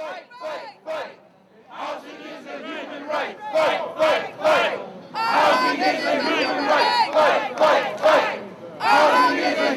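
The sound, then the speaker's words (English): A crowd at a 2013 tenants' group rally outside New York City Hall in Lower Manhattan shouts in loud, rhythmic bursts, many voices rising together in chant-like waves with short pauses between, growing fuller and more sustained toward the end. “He energizes the crowd outside New York City Hall in Lower Manhattan.”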